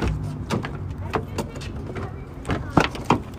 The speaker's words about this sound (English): Oh my God, wait. No, let me open the freaking car door.